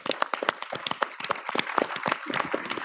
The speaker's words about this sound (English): So I want a shout out to them, to thank them and catering and everything together. So if you'll join me in giving them a round of applause.